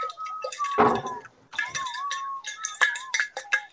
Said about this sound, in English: That's drinking noises. It sounds like you pouring water in on a cup.